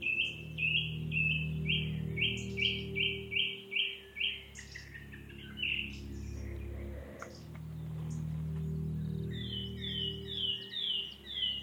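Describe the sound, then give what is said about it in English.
A wren sings a rapid, bright trill of quickly repeated notes, then returns with another fast burst a few seconds later, heard clearly over a steady low rumble in the background. “And the wren with that mad little trill.”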